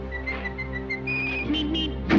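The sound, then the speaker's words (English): A person whistles a short run of quick, bright notes, then holds a longer steady tone before rising higher. The whistling is fairly clear over a low, steady musical drone, with no talking. “You know how to whistle, don't you”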